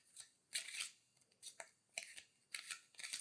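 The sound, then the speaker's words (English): A deck of playing cards, first in order, being shuffled a few times: a series of short, crisp riffling bursts in an irregular rhythm, fairly quiet, with no voices. “So the cards, they began ordered, but as you shuffled them, you increased the entropy.”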